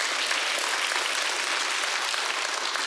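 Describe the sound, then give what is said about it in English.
An audience at a Christian sermon applauds the proclamation of Jesus Christ's resurrection, in a steady, dense wash of clapping that holds at an even loudness for the full few seconds, bright and hissy with no single claps standing out. “Yes, you can clap at that if you want.”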